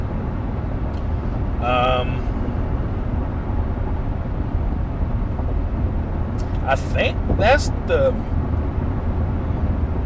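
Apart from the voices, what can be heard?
car interior road noise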